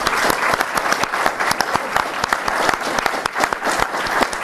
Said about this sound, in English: Are there any Patreon backers in the house tonight? Please, everyone, give a big round of applause.